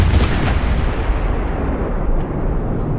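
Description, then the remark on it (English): Heavy cannon fire booms in a dense, continuous barrage, loud, with deep rumbling and overlapping blasts that never let up, no voices present. The cannons are blasting during the burning of Bandari. “You can see skyships across the horizon rising with red feather colors. You can see cannons blasting.”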